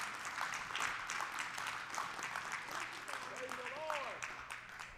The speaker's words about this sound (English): Give the Lord a hand clap of praise if that helped you this morning.